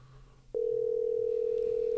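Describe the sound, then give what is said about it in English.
A steady electronic ringback tone of an outgoing call placed in the middle of the afternoon starts abruptly after a half second of faint hum and holds unbroken and loud to the end, as heard through a phone line, with no talking. “Oh, I hear it ringing.”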